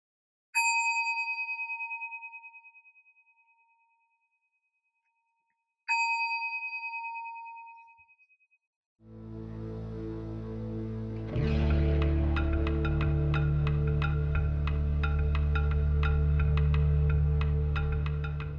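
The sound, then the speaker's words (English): A meditation bell is struck twice, each clear ring slowly fading into silence, before a swell of dense music rises and fills the rest. “I'm going to ring the bell and make a shift.”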